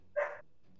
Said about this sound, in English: Whose dog is being noisy? Hey. I don't my have a dog. So. Yeah. When in doubt, it's usually my dog,